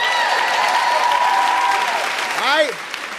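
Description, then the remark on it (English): A crowd claps loudly and steadily for about three seconds, with drawn-out cheers and a rising-and-falling whoop riding over the dense applause before it begins to thin out. “Let's give ourselves a big round of applause for being here tonight.”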